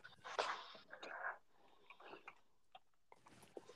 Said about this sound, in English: Stop that. Stop kissing the fucking dog.